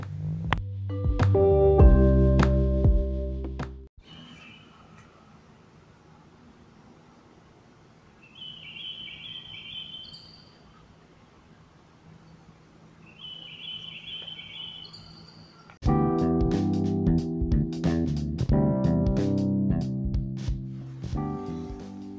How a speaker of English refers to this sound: I held my phone out the window so you could hear the green birds across the street. They are absolutely precious. I love them so much. Sometimes they squawk at each other very angrily, and even that's adorable.